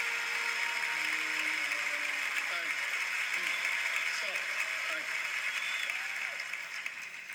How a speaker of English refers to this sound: He gets up onto the stage, and they're still clapping, and he goes, "Hey, stop. Hey, stop." He says it twice.